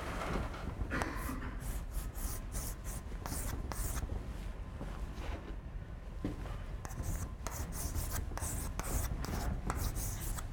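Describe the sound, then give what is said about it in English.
Marker or chalk scratching across a board in quick, repeated strokes as a train is drawn on the board, steady for several seconds with short squeaky bursts, and no one talking. “So let me draw the train first.”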